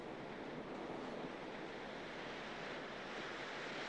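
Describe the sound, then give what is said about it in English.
Continuous surf rushes and hisses at a steady level, like waves washing onto a shore, with a faint windy rumble underneath and no voices. “I've never seen a painting that captures the beauty of the ocean at a moment like this.”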